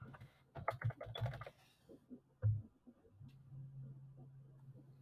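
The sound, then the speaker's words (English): A quick burst of sharp, clicky keystrokes on a loud mechanical computer keyboard as a book is added to an online shopping list, followed by one heavier clack and then a low steady hum with the typing stopped. “Your keyboard is so loud.”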